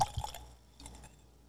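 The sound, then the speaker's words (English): Whisky pouring into a glass in a short splash, with a few quiet liquid drips and trickles trailing off, no voices. “The nose off of this thing just from me pouring it.”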